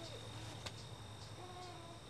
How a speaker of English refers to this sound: You can hear the insects singing their final songs